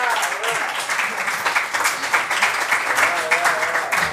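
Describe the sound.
An audience at an open mic night applauds steadily for several seconds, a dense wash of many hands clapping at once, with a few voices whooping and calling out over it.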